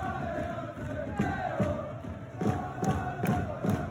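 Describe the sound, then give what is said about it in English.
A large, dense hockey crowd roars continuously while rhythmic thuds of jumping and clapping land roughly twice a second, building in intensity toward the end; the crowd is reacting after an icing in the second period of the game. “You know what that whole, like, what everyone was jumping, clapping about there?”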